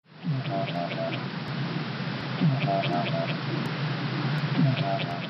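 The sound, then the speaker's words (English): An Antarctic minke whale's bioduck call, recorded underwater in New Zealand waters: a rapid series of short, quacking pulses repeats in regular bursts about every two seconds, loud against a constant hiss of underwater noise, with no voices. “And this is, I can play for you, this is an Antarctic minke whale call.”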